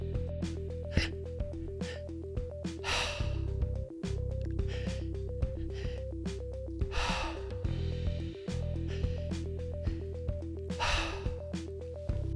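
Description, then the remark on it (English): Rhythmic three-part breathing through the mouth repeats about every four seconds: quick staged inhales into the belly, then the chest, then a loud, breathy exhale. The cycle runs three times, clear, over a soft, steady musical drone. “Today we'll be breathing a three-part breath through the mouth. An inhale through the belly, inhale through the chest, then exhale.”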